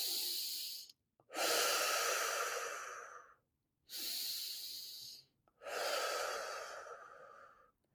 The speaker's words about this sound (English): So take your breathing down into your belly. Do some belly breathing. Really exaggerate it.